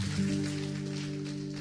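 A church audience gives the Lord a hand clap, applauding with dense, steady clapping that holds at an even level throughout, a low sustained hum running beneath it.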